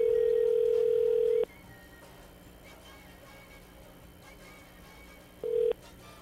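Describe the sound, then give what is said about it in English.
A steady, loud electronic telephone tone during an outgoing phone call sounds for over a second, cuts off into a long quiet stretch of line hiss, then starts again briefly near the end, like a call waiting to connect. “Let's see, why is my phone calling?”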